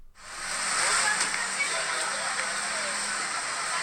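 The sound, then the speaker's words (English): A steady murmur of many overlapping voices at a bus stop in Brazil, blended into a constant hissing wash of background noise that holds at an even level throughout. “I think that the most vocal it gets is this one, which is Brazil bus stop with hum of voices. That's the title of the track.”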